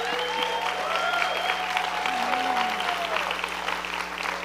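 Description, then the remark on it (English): An audience at a ceremony claps steadily and densely for the full length for the children brought up on stage, a continuous wash of many hands, with a few voices calling out faintly through the applause. “come on, if you're going to clap for the kids, clap properly.”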